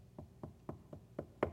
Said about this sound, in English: This is a timid knock.